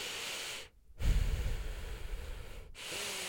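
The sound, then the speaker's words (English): A voice imitates the loud, heavy breathing of an older man sitting next to someone in a movie theater: a long noisy inhale-exhale cycle with brief pauses between, rough and airy, with no talking. “If I'm sitting next to somebody, they always are breathing loud. It is usually an older guy. Why do they always breathe like this?”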